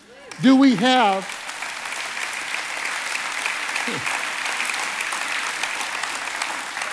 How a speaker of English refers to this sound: You're cutting into my time with your applause.